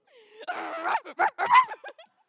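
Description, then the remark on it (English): A person imitates a small dog with a quick run of yappy, high-pitched barks and whines, fairly loud, about two seconds of vocal yips with short gaps between them. “You're trying to convince them there's a real dog in the house.”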